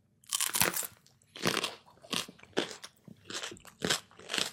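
A loud crunchy bite into a Serrano pepper, followed by a run of sharp, crackling chewing crunches in an uneven rhythm, with no talking.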